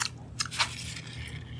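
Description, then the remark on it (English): Crisp crunching of an orange pumpkin spice pretzel being chewed right by the microphone, with a few sharp bites and steady mouth noises over a low background hum. “So, try not to chew into the mic on this one.”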